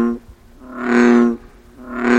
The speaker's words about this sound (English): it's advantageous for them to have as loud a croak as possible.